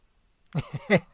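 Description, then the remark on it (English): A dog barks three times in quick succession, short sharp yelps with the last bark loudest, after a moment of silence. “The dogs are telling me that it's time to shut it down.”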